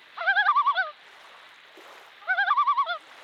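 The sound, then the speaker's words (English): A loon's tremolo call played back on a phone: two bursts of rapid, quavering, laugh-like notes, each bout about a second long with a steady warbling pulse, separated by a short quiet gap, with no voices. “This one is the so-called trello sound.”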